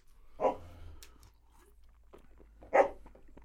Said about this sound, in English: Please listen to the sound of my dog barking for a moment.